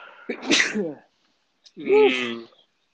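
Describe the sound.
Two loud sneezes about a second apart, each a sharp explosive burst, the second one more drawn-out and voiced.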